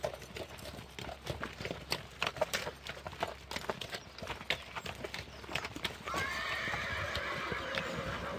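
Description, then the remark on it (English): Working farm horses' hooves clip-clop steadily on a hard surface, with a long whinny rising over the hoofbeats in the final seconds; no one speaks. “a teamster from the North Island, a good friend of ours, and he comes down for usually a fortnight each spring and works the horses.”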